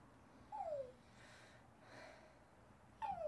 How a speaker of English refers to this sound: Oh, a little dog whimper sound. That's new.